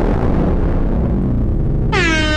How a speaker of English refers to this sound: The air horn sounded late. They should sound that off before the bomb dropped.